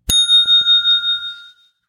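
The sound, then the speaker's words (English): A single bright metallic ding from the small tabletop bell of the Sushi Dice game, struck once sharply and ringing out with a clear sustained tone that fades over about a second and a half. No one speaks. “I think this is one of the best dice and bell gamed componented games that I have ever played.”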